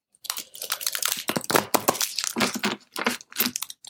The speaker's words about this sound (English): Just give us a moment while we shuffle our cards.